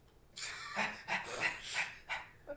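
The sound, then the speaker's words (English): A dog barks in a quick, uneven run of about six short, sharp barks, moderately loud, with no talking over them. “Roof, roof.”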